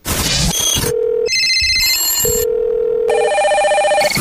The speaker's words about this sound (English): We're going to have the phone call. Going to have the phone ring. It's going to be exciting.